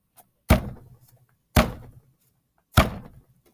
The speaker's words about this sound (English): But the thing is, the door closed behind him.